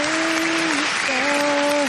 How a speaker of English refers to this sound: Clap form. Clap form. And who we clapping for this week?